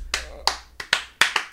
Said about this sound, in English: Let's just clap it out. Let's just clap it out. Yeah. We'll get some applause sounds and some like cheering noises at the end here.